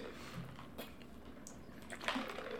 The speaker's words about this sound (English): We got to pace that. We can't both take a sip at the same time.